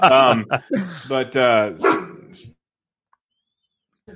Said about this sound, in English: Whoa. Sorry. All right. The dog got excited for something.